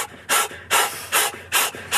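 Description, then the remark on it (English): Forceful, rhythmic breathing from Tony Robbins' priming routine: about five loud, hissing breaths in quick succession, each a short airy burst with brief gaps between, and no talking. “And you do this, like, breathing thing.”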